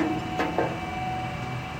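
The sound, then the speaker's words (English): Oil pumps in the Elk Hills, 20 miles west of Bakersfield in Kern County, run with a steady mechanical hum and drone, broken by a couple of brief clanking knocks early on, at a moderate, even level with no one speaking. “In the Elk Hills, 20 miles west of Bakersfield, you see and hear oil pumps everywhere.”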